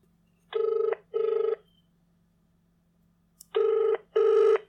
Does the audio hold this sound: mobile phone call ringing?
yes